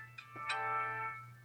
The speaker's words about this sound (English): My work phone's battery dying.